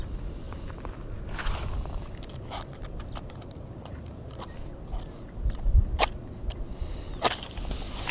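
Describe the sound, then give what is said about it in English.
Footsteps of a man walking past with his dog outdoors in the wilderness, a few crisp, uneven treads with sharp clicks and scuffs over a low rumbling background, no talking. “Perfectly coincided with a man walking by.”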